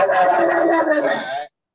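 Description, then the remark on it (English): A person imitates a dog with one long, drawn-out, loud bark, lasting over a second before stopping abruptly into silence. “That was only one person barking.”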